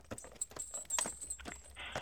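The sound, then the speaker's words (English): Hollow clip-clop knocks like horse hooves, several sharp hits spaced roughly half a second apart, with a bright metallic jingle ringing between them and no voices. “Can you hear the horse? I don't think it's a horse, but whatever it is, it is. Yeah, it's, you know, the clippity-clop.”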